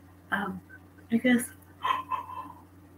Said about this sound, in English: I guess I'm just gonna yawn a lot here. it is late, I suppose.